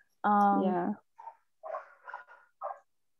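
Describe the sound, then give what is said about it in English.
A voice imitates a dog with one loud, drawn-out whining yelp lasting under a second, followed by several short, quieter bursts of muffled talking. “The dog's like”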